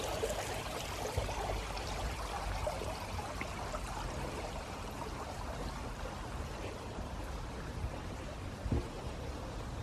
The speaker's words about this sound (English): I always think water is very soothing.